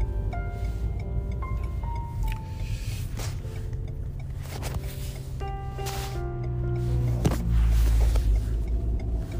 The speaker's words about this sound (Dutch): Vrachtwagens die langs elkaar proberen te komen. Het is ook veel te smal, hè, deze weg. De industrieweg die hartstikke smal is. Die is gebouwd voor vroeger.